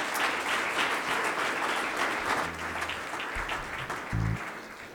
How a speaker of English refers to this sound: Somebody give him a hand clap of praise this morning.